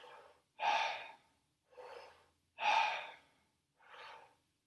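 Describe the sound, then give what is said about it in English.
Deep breathing all through an open mouth in a second round of a connected-breathing exercise at increased tempo, clear: strong, rushing inhales alternate with softer, relaxed exhales in a steady rhythm, about five breaths in all with no talking. “Try to see if you can increase the volume of your inhalation while still completely relaxing on the exhale.”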